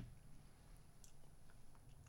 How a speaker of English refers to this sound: And he's got the chewing gum again on the mic. See, I told you. Can you hear it? I can hear it from here. Looking at you, I can hear it. I get nightmares when you do it on fucking commentary.